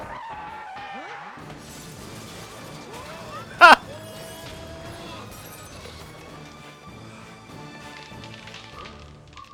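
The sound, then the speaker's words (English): The car of Bulk's parents, which is having some trouble, pulls in for Parents' Day with squealing, skidding tires, sweeping tones rising and falling, then a sudden loud crash-like bang midway before the engine noise settles and idles on. “Now, his folks are having some trouble with their car. Oh, they should be cruising on in just about now.”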